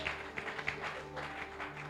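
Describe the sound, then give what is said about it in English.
A crowd at a worship service claps together for the people who have just led worship, a dense, steady wash of overlapping hand claps, with a few sharper claps standing out near the start and a low hum running underneath. “Let's clap our hands for them.”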